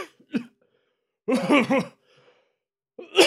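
A person coughs in a loud burst of three rapid hacks, with a few smaller throaty sounds before and another cough starting at the end; no talking.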